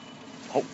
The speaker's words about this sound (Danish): Åbner jeg lige for motorrummet.